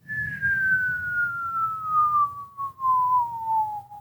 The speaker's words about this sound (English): We see the nuke get fired off, and there's a shot of Bert being like, you guys hear something? And there's that whistling sound.